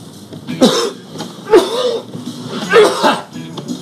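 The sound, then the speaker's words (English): A harsh, raspy smoker's cough attributed to Bill Murray, not flu: three rough hacking bursts about a second apart, loud, with a throaty rattle and no talking. “It's not flu or anything, it's just smoker's cough.”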